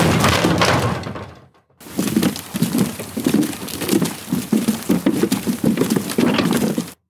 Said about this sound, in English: But before she could do so, somebody kicked the door open.